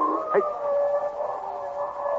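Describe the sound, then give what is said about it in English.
A wolf howls in one long, drawn-out note that holds a steady, slightly wavering pitch, clear, with no voices around it. “The wolf is not heavy. He can run on the crust.”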